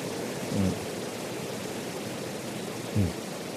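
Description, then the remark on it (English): Steady, dense hiss of rain falling, a constant wash of sound with two soft low thumps about two and a half seconds apart. No one speaks. “Whether the sound, the rain falling down, whether it is appearing to one's mind, merely labeled by mind, or not merely labeled by mind.”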